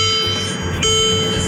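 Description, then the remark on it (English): A car's warning chime, signaling that the door is open and no key is in the car, sounds as a steady, high-pitched electronic tone with ringing overtones, shifting slightly partway through, over a low engine-like rumble. No one speaks. “Oh, that means the door's open. That means there's no key in the car.”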